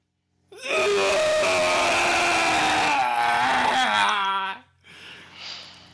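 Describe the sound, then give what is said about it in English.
A voice imitates retching with a loud, sustained guttural scream, harsh and strained with a rough, buzzing tone, lasting about four seconds before breaking off into a short, breathy rasping exhale. “Yeah, so it's like a scream, guttural, like, and I can't help it. So scream vomit.”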